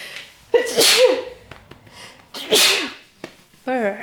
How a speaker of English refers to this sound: I'm gonna sneeze. Have a sneeze, love.